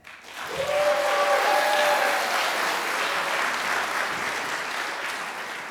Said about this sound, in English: All right, claps and cheers